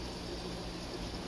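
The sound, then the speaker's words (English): Steady fizzing and bubbling of a thin layer of liquid poured over fruit, a continuous soft crackle with no talking over it. “And it's going to fizz and bubble.”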